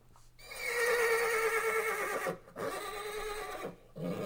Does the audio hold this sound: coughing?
no